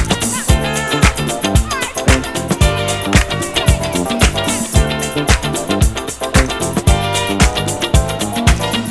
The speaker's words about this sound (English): Bringing the instruments to the forefront. Introduce the now legendary hand clap.